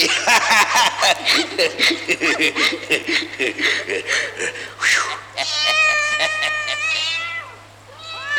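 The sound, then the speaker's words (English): A gruff voice mutters and chuckles for several seconds, then a cat lets out a long, wavering, loud meow that trails off into quiet. “Kitty, kitty, kitty. Have a little old time rum with old Bill, eh? Come on now, be a nice little pussycat.”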